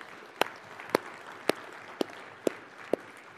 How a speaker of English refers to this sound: And that's just amazing. And yeah, we can sure clap for that.